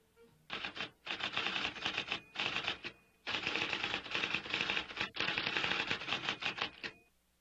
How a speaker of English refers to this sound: Sounds like a gun. Shooting gun. Yeah, it sounds kind of like a machine gun. Yeah. It's true. You know what that was? What? That was a typewriter. Oh, a typewriter. Do you know what that is? Yeah, it's the old-fashioned computer thing.